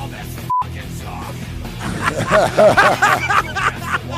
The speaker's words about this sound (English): There's the beep, beep, beep.